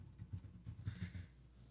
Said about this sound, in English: Sorry, I was tippity typing there.